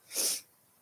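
sneeze

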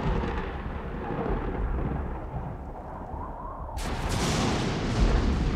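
lightning strike with thunder

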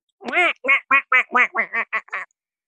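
duck quacking sound effect

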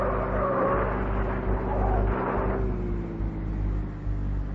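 car engine revving

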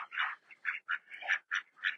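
ducks quacking

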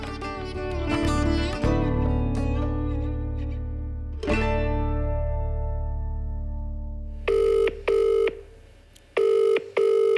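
telephone number being dialed

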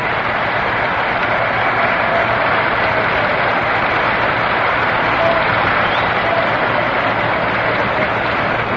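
stadium crowd applause

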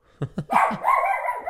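dog barking

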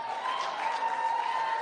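audience clapping

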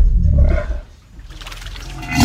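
lion roaring

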